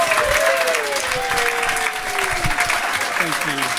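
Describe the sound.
Loud, steady applause from an audience at a Christmas special fills the whole stretch as two guests are welcomed, dense crackling clapping with festive cheers and whoops rising over it, voices calling out in sliding, excited pitches.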